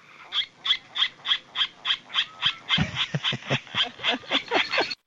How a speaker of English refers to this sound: Here's the Virginia rail, and this is called the grunt call. It almost sounds like a pig.